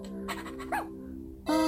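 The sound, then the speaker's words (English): A video game dog gives a few short yelps and a louder whine near the end as it runs into an ice cave, heard over a steady low musical drone with no one talking. “Apparently the dog wants to play hide and seek in the cave, which is the most terrifying idea in the world.”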